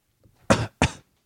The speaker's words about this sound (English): That was a big cough.